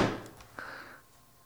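A dunk on a Fisher-Price toy basketball hoop: a quick clattering thump, then a sharp knock as the ball meets the rim, leaving a short, fading metallic ring. No one speaks.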